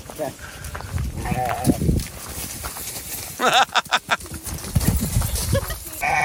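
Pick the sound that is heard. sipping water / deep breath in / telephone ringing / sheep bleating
sheep bleating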